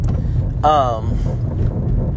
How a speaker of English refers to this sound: Don't mind that rickety crickety. I'm on a bridge. It's like, it's my car. Don't judge me. Don't judge her. Leave her alone.